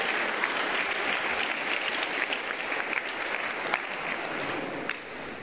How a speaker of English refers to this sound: Clap for these guys. Ei, salva de palmas para eles.